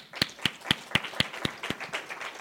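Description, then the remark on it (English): A brief round of applause: sharp, evenly spaced claps about four per second, loosening into a softer, blended patter of hands before trailing off. No one speaks. “So just a quick round of applause for them.”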